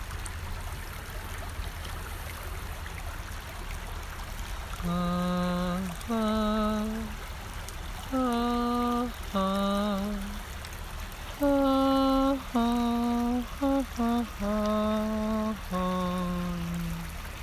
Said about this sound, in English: Maybe the river will gift you a song, and I want you to sing it.